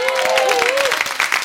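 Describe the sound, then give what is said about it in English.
An audience applauds with dense, steady clapping throughout, while a high, wavering whistle or cheer rises and falls over the first half of the burst, at a live music performance recorded by 3RRR, the public radio station in Melbourne. “A round of applause for 3RRR, please.”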